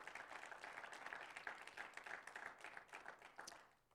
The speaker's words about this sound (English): We can clap that up.